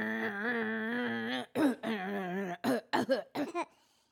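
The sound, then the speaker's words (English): Someone clears their throat, starting with a long, drawn-out voiced rumble and then several short, rough bursts in quick succession before falling silent. “Let me clear my throat.”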